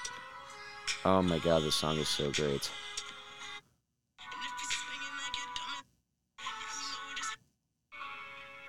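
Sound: pop song playing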